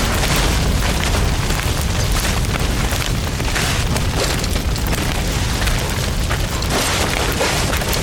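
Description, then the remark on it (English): A sustained, roaring explosion of gas pumps set on fire, with deep rumbling booms and crackling fire, loud and continuous throughout, with no voices. “He set the gas pumps on fire.”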